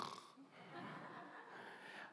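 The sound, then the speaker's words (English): A person imitates a snore while telling of Jesus asleep on the boat in a storm, with one drawn-out, raspy, breathy rumble lasting about two seconds, heard alone and at a steady, moderate loudness. “I don't know if Jesus snored.”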